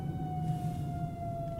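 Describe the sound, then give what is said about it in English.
An emergency siren holds a steady, slowly falling wail over the low rumble of a moving vehicle, fairly loud and continuous throughout, with no one speaking. “It's a siren.”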